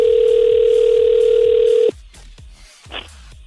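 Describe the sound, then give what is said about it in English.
A loud, steady ringback tone of an outgoing phone call from radio hosts to a contest entrant hums for about two seconds and then cuts off, with a soft rhythmic thumping beneath it and a brief faint beep afterward. “But the important thing is, after you've entered and given us your name and phone number, you need to pick up the phone if we call you.”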